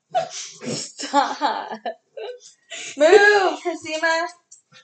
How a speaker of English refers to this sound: one of your dogs is dying. I don't know why she makes that noise.